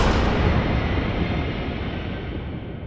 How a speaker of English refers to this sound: and more shots rang out. And they echoed through his phone's receiver and crackled on the dispatcher's end. Hello? Hello? All the 911 dispatcher could hear were gunshots ringing out in succession. Repeated pops. Silence.